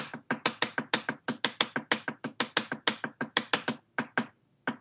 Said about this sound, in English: All right, so paradiddle-diddle.